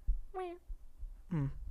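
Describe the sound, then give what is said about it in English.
A person makes two short meow imitations, one after the other with a brief pause between, each a nasal, wavering cat-like cry against a quiet background. “Do your best cat meow.”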